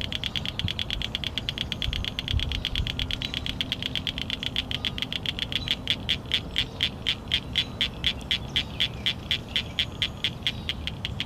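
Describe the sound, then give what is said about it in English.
A male cricket frog calls from vegetation with rapid, sharp clicks like pebbles tapped together, the series speeding into a steady rhythmic run, loud over a low rumbling background. “The males call from vegetation with a rapid, short sound like pebbles being clicked together, somewhat similar to the call of crickets, which, coupled with their size, is how they got their name.”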